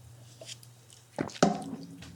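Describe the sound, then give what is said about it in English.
A can of root beer cracks open with a short click and then a sharper pop, followed by a brief fizzy hiss that fades out over a low steady hum. “Crack a can in the mic.”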